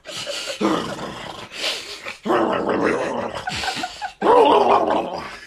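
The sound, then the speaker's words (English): A voice imitates a stalker's heavy, ragged breathing, as heard over a shaky POV camera shot in a film: about five loud, drawn-out rasping breaths with a throaty, growly edge, coming in a slow uneven rhythm with no words spoken. “And then all of a sudden, you just have this weird, like, shaky POV camera shot and someone breathing.”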